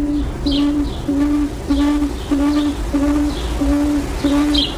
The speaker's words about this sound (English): The bird makes a number of sounds, including this soft, repetitious call often heard throughout the night.